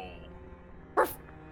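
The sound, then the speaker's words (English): A single short, sharp dog bark cuts through near the middle, loud against a quiet, low background hum, then fades quickly with no voices present. “And those dogs came bursting around the corner of the cabin.”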